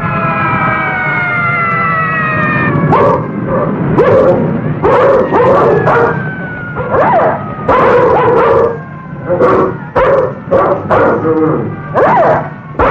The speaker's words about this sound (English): You hear those sirens? They're for you.